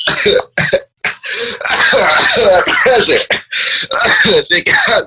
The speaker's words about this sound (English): Yeah, that's the smoke. It's not the corona cough.